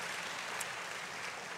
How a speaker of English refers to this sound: Well, yeah, you can give the Lord a clap offering. Certainly, he deserves more than what we can give.